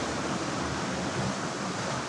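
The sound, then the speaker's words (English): A huge 30-foot-long conveyor-belt dishwashing machine runs in a dish room with a steady, dense rushing hiss like spraying water, unchanging in level throughout, with no voices. “he was working alone in the cavernous dish room, unloading dishes from a huge 30-foot-long conveyor belt-style machine”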